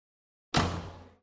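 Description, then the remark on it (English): A single loud door slam: a sharp, heavy bang after silence, with a low booming resonance that rings and fades over about half a second. No voices. “the door closed behind her with a slam.”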